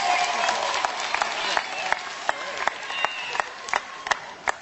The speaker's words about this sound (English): Please, would you bring her up with a big round of applause?